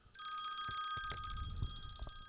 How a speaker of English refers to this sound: Is that the phone? Yeah, it sounds like the phone. Hold on.